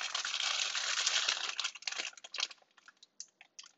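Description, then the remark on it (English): Loud crinkling of a plastic bag being tugged and pulled at as someone tries to open it, a dense rustle for about two seconds that breaks into scattered sharp crackles and pops. No voices. “Open the bag.”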